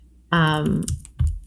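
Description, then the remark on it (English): A few quick, loud clicks of typing on a computer keyboard, overlapping a sustained voiced sound from someone. “I'm doing my loud typing.”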